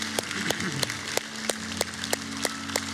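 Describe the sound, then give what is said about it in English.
A church audience applauds, giving God a round of applause for two people who made decisions for Jesus, in a steady, even wash of clapping, with sharper claps landing at a regular beat over a low, constant hum. “Hey, can we give God a round of applause for two people who made decisions for Jesus?”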